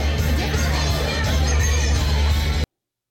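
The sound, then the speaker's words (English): A rally crowd cheers and murmurs in a steady, dense wash of voices with a few children's shouts mixed in, holding an even loudness for under three seconds before cutting off abruptly. “There's your 800 people right there, allegedly.”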